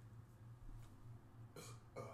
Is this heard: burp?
yes